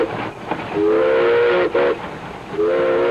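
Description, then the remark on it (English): A train rumbles along while its whistle blows in long, steady, harmonic blasts, broken briefly and then sounding again over the continuous mechanical noise of the moving cars. “The iron horse became the beast of burden for an expanding America. It was big, it was strong, it was fast.”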